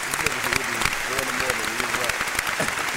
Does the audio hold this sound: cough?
no